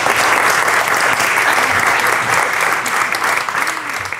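Sustained applause from a crowd, a dense steady patter of many hands clapping at once, loud throughout and easing slightly at the very end.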